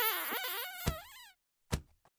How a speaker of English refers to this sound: Ah, I found something. A door. A handle. Let's just give this a pull.